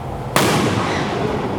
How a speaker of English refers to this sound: Yep, that's a firework, guys.